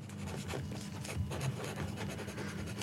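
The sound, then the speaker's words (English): Two people's pens scratch busily across paper as they write answers to a quiz question about NASA's OSIRIS-REx spacecraft, a steady rustling scrawl with small bursts of strokes and taps, continuing without pause and with no one speaking. “Your pens work.”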